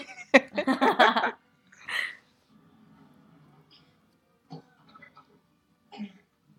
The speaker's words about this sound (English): Good coughing. Very good. That's how I cough.